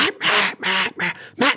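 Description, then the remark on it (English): A rapid run of five or six short, raspy quacks blown on a duck call with short bursts of air, loud, with brief gaps between bursts and no talking. “No matter if you're doing short little quacks, if I just do short little bursts of air and I blow on it, it's still going to blow across that table and shoot across.”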